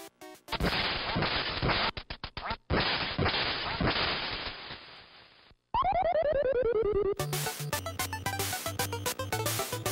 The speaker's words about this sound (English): Little duck hunt, man, Nintendo, that's a lot of fun, but here's the deal.